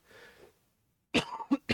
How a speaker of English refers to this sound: this COVID cough sucks a lot. I've already mentioned it.